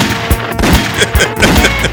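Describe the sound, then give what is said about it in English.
Rapid bursts of gunshot sound effects fire in a dense, loud volley, several sharp cracks and booms overlapping within a couple of seconds with no pause between them. “So me just firing pure gunshot today.”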